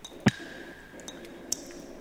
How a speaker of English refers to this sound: What is that noise? That's the water leaking.